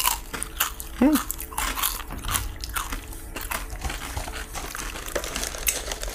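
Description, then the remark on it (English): Someone bites into a thin Good Thins chip and keeps chewing: a run of sharp, crackly crunches in an uneven rhythm, with a brief hummed vocal sound near the start. “That is a thin chip.”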